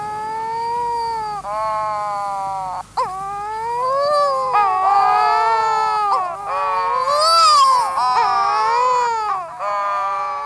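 Wedge-tailed shearwaters give loud, continuous moaning courtship calls, several eerie, wavering wails overlapping with rising and falling pitch, almost like crying infants or yowling cats, with no talking.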